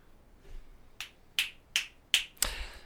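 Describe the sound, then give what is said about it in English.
Five crisp finger snaps in a quick, fairly steady rhythm, each a sharp, bright click with a brief tail, the last coming a touch sooner. No one speaks. “I snap a little bit.”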